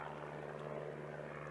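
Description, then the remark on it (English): A steady propeller plane drone, a constant low engine hum with a strong buzzing tone, sustained as it passes overhead with no voices; the plane is on approach to Cincinnati's Municipal Lunkin Airport just after 10 a.m., still 10 miles short, flying over the suburb of Montgomery. “Just after 10 a.m., the plane began its approach to Lunkin.”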